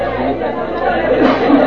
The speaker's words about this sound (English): Keeping his place in the crowd of cheering, chattering people on the pier, he orders his man,